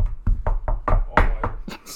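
A rapid, insistent run of about eight knocks on a door, fairly loud, each a sharp wooden rap in quick, slightly uneven succession.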